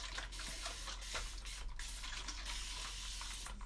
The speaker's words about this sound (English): And then I spray the rose water again.